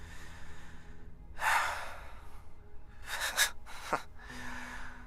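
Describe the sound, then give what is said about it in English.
A short run of breathy coughs, three or four rough bursts with brief gaps, the last ones coming in quick succession. No one speaks. “I see the grandstanding, and I just cough.”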